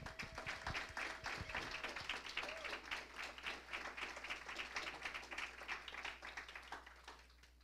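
A crowd in a church applauds as a speaker is welcomed up front, many hands clapping in a dense, steady patter that holds for several seconds before tapering off at the end. No one speaks over it.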